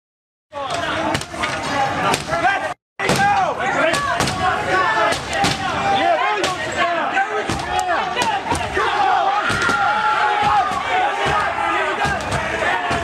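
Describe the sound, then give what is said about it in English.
A loud, agitated crowd of protesters yells continuously while sharp bangs and slams hit repeatedly as they begin to break through glass doors. “So protesters are at the doors with glass, and just as they're beginning to break through...”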